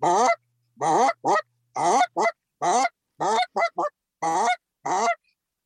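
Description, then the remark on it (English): A series of about eleven short, loud honking bark calls, some in quick pairs or triplets, each starting low and sliding upward in pitch, with brief silences between and no talking. “You know, you get the bass in the front with the B and then you go high pitch at the end with the K, but everything else in the middle is like a dull tone.”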